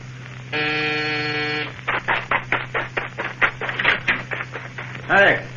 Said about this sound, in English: Hey, who rang this doorbell?